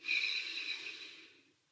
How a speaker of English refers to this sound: Breathing in and breathing out with a sigh. And just letting it all go.